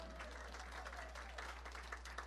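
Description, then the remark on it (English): People applauding together to celebrate pledges received, a steady dense patter of many hands clapping at once, sustained and fairly loud throughout, with a faint murmur of voices underneath. “And so I wanted to say, yay, thanks, we can all clap, woohoo!”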